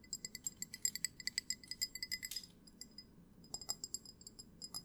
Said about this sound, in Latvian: Paņemsim kaut kādu šito te. Varbūt var dzirdēt, kad klausās, bet visādi šādi tapping noises vai glāzes.